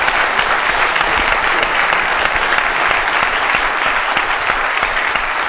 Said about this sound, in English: Please give a big round of applause to El Chigüire Bipolar.